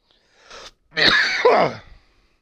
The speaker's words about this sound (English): Buddy, I'm tired of coughing. Yeah, buddy, I'm tired of it too.